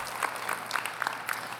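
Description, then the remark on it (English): A short burst of applause from a group for the worship team after a song, many overlapping claps forming a dense, steady patter of moderate loudness, with no talking heard. “I didn't give them a round of applause.”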